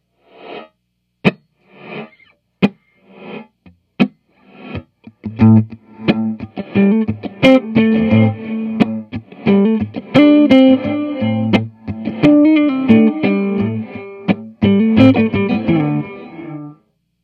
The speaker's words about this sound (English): We're going to start on the swoosh reverb. I'm just going to give you guys a good slap and not play anything after, just so you can hear what the reverb is actually going to sound like.